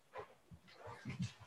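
A dog barks in a quick, uneven series of short yelps and woofs, moderately loud, with a few whiny bursts mixed in and no talking.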